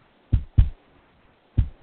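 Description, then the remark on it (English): A low, thumping heartbeat: two lub-dub pairs of deep, muffled thuds separated by a pause, loud with no voices. “Happy Heartbeats with Lance Cranston.”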